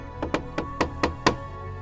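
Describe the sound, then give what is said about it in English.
A series of six sharp knocks on a door, closely spaced in an uneven rhythm, moderately loud, with no voices. “And one day you remember sitting in a room, just looking through names, trying to figure it out when there's a knock on the door.”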